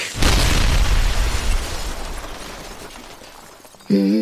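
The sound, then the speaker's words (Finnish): A dynamite explosion erupts with a sudden deep, loud boom, followed by a long rumbling roar and crackling debris that slowly fades, then a voice begins talking at the very end. “Olisiko hei sulla vähän sitä dynamiittia?”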